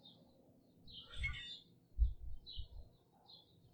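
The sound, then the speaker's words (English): Starlings chatter and whistle from a tree behind the speaker at sunrise, bursts of squeaky, buzzy calls repeating over a low rumble of rising wind and handling noise. “Got some starlings making their racket in the tree behind me.”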